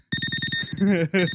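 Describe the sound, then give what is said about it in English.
A video game low-health warning that beeps continuously when the character is almost dead, until switching to a turtle with better health: rapid, steady electronic beeping in quick pulses with a high bright ring, followed by a louder, wavering tone that briefly breaks off and resumes. “Really, the beeping when you're almost dead.”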